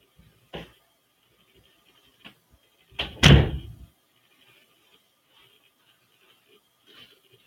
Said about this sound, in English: Give me 1 second, guys, so I can go ahead and get the door.